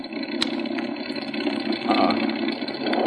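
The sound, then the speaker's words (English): A loud aircraft engine on Flight 22 runs steadily, its rough drone broken by occasional sputters and pops as it misfires badly, with no one speaking. “Engine missing badly.”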